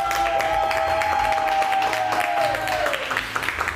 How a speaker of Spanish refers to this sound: Quiero aplauso en el estudio. Quiero verlos uno a uno aplaudiendo. ¡Aplauso!